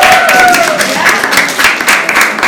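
A crowd applauds loudly and steadily, dense clapping filling the whole clip, with a couple of faint whistle-like tones sliding downward early on.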